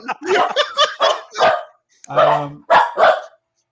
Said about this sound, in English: You've excited my dogs. I spoke The Walking Dead, and they're freaking out over here.